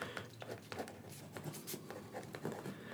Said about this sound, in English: So number 44, I'm going to kind of make some of my own notes here.